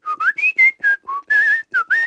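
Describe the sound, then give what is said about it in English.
A person whistles a short, clear melody of about nine quick notes that glide up and down in pitch, fairly loud, with no talking: the whistling part of a party trick for imitating a cricket. “So it's just two parts. One part is just the whistling.”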